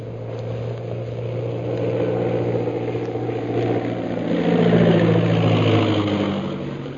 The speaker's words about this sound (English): As the scout plane circles in for a landing on the parade ground, Bluger, accompanied by General Lin Pu and Shanghai Lil, rushes out of the castle.